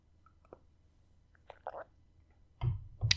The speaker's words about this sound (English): And let me just have a little sip of my tea.